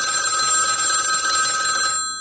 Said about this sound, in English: And well, she said, well, when I was ironing my work suit, the phone rang.